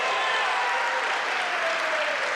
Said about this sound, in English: I think that deserves a round of applause right there.